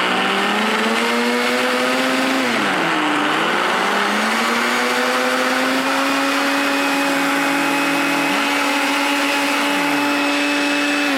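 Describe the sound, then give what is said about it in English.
A blender runs loudly and continuously, blending herbs, lime juice and olive oil into a paste, its motor whine holding steady with a brief dip in pitch as the load shifts, then climbing back up. No one speaks over it. “Now, we have in our blender a combination of herbs. We've also got some juice and limes. We're going to add some olive oil.”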